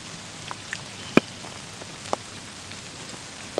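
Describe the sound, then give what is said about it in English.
Steady rain falls in a soft, continuous hiss, with a few louder individual drops tapping at irregular moments. No one speaks. “The rain is coming down.”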